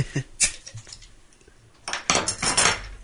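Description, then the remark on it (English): A few short glassy clinks, then a dark, ruby red beer from a second bottle glugs and fizzes steadily out of the bottle into a glass for about a second, a bright hissing pour with no talking. “Is that pouring lighter? The head's certainly different on it.”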